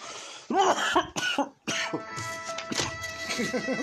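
A few harsh, close coughs burst out in quick succession, followed by a steady mix of background chatter and a faint sustained tone.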